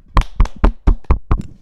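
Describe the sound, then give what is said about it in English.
A few hands give a weak, quiet golf clap: about seven soft, evenly spaced claps, sparse and unenthusiastic, with no voices. It is a round of applause for Tom Brady retiring from the NFL. “This is the worst golf clap ever.”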